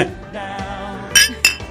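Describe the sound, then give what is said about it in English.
Two bright glass clinks ring out in a toast, about a quarter second apart, each with a short shimmering decay over a low, steady background hum. “Hey, cheers to that.”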